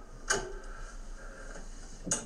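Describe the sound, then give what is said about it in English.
The door of room 203 is pushed shut, giving two sharp latch clicks about two seconds apart with a faint metallic ring against a quiet hum. “Close the door.”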